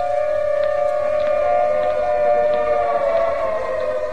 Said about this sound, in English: The siren is a musician of no value, knowing only one tune, which each time played is a disturbance of the peace.